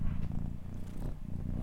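A cat purrs steadily, a low rumbling vibration that pulses continuously with its breathing, with no voices over it.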